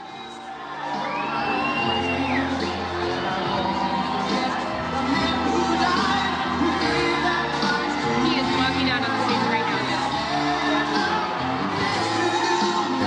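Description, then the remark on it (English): A large crowd at Donald Trump's South Carolina victory speech fills the air with loud, sustained cheering and voices singing together, with steady rhythmic clapping running underneath throughout. “Singing, they're clapping.”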